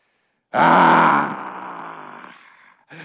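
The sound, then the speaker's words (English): A person imitating an angry noise voices a loud, sustained angry grunt that starts abruptly, trails off into a strained growl over a couple of seconds, then a short second grunt follows, with no other talk. “What does an angry noise sound like?”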